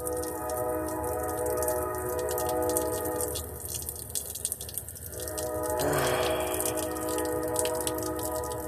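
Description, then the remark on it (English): A train horn blows in one long, steady blare lasting the whole stretch, swelling louder for a moment partway through, with no one talking; the horn keeps blowing for about four minutes in the early morning. “You're not gonna hear nothing except for train horns blowing”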